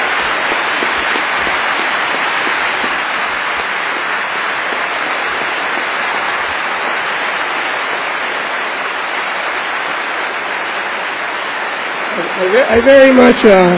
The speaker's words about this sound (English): I very much appreciate your applause for me. Thank you.